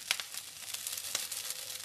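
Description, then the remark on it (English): Dried shrimp and lap chong sausage sizzle steadily in a hot pan, a dense crackling hiss with scattered sharper pops, without any talking. “Okay, let me just concentrate on frying this up so it doesn't burn.”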